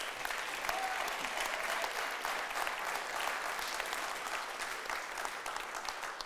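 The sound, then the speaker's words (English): An audience applauds a couple coming on, a dense wash of many hands clapping at an even, moderate loudness that holds for several seconds without letting up. “So they're going to come on. So clap for them.”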